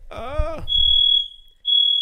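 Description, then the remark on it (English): A building fire alarm blares with a loud, steady high-pitched tone, cutting out briefly and then resuming, right after a short burst of a voice with harmonic-rich tone at the start. “We well, set that, a fire alarm.”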